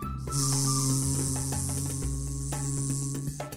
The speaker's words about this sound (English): Sure sounds like some kind of insect, but just then she saw three tiny bees buzzing around the flowers.